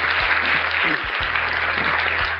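A crowd applauds in a steady, dense wash of overlapping claps that holds at an even, fairly loud level for a couple of seconds, with a faint low hum underneath.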